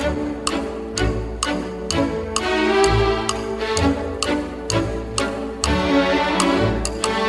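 Orchestral music plays with a bright, bouncy melody over a steady woodblock-like ticking, imitating a clock. The ticks land regularly and crisply throughout, with no voices.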